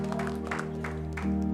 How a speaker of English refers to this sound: Every time the church door is open, you will be there. Clap for the Lord Jesus.